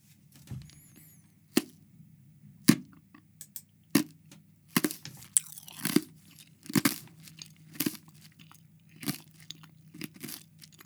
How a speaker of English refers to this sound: Ice crunching there. That's for you ASMR nerds. ASMR nerds. Ice cubes. One ice cube.